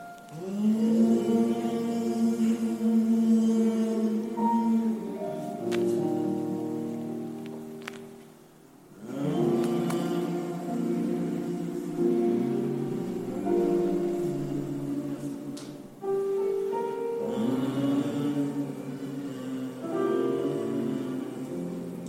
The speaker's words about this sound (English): As we're in prayer, as we're humming it, thank you, Lord Jesus.